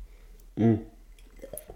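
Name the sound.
sipping tea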